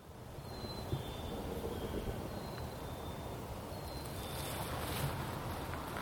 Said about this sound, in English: Yeah, see, now, just when I think it's perfectly quiet, I hear a car.